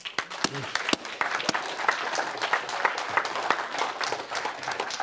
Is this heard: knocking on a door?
no